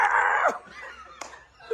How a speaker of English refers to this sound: why you guys scream so loud for? Well, we got old, we got to scream loud so they can understand us.